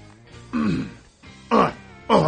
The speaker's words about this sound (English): If I just start coughing like that, like Neil Hamburger.